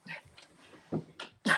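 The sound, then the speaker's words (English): A dog barks a few times outside the door, muffled, with short sharp barks in an uneven rhythm and the last one loudest. “I'm sorry, my dog is I'm gonna have to mutter. No, don't worry. Outside the door.”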